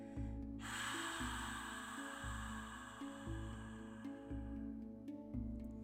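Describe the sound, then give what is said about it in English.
A long, forceful breath pushed out through the mouth with the tongue to the roof of the mouth, an eight-second exhale in a breathing exercise, a steady airy whoosh, clear over a soft background of repeating low musical tones. “Then exhale for 8 seconds through your mouth, tongue to the roof, with sound like this.”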